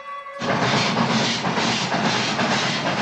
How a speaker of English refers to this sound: And we cut to the train.